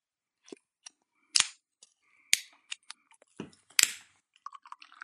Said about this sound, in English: You have to admit, there's something fun about being able to open up a can of homebrew.